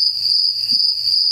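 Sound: crickets chirping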